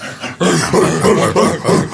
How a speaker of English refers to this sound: Here come the dogs. I see them.